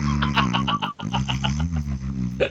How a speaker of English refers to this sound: Sound like a Ren and Simpy fart doll.